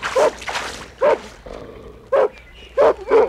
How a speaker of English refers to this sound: What's that? Sounds like a dog. A mean dog, and it's coming closer all the time.